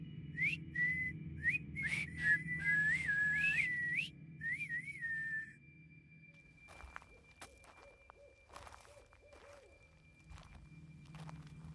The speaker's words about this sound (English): She joined in on the whistling.